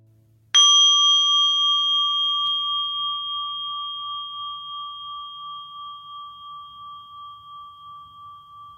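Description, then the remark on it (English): A meditation bell is struck once and rings out clear, its pure tone slowly fading with a gentle wavering shimmer over several seconds, with no voices. “We'll try this now with the meditation bell.”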